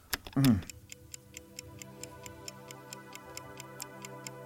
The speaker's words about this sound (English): So if you could hold your breath, we'll have a little ticking clock.